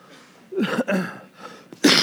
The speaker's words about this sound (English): Excuse me. I didn't do that right. I just coughed in the microphone.